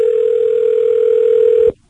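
A steady, unbroken telephone dial tone hums loudly and evenly for nearly two seconds, then cuts off abruptly into silence, as a prank phone call is placed to a U-Haul rental place. No voices are heard.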